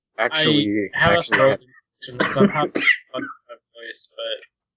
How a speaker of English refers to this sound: I thought you were fake coughing, but you were actually just hacking. No. You were actually dying.